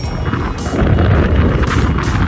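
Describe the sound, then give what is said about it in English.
Strong wind in Colorado, said to come from a tropical storm, blows over tall grass and buffets the microphone with a continuous loud, low rumble, swelling in gusts with brief bursts of high hiss, and no voices. “Jeez Louise, it's windy.”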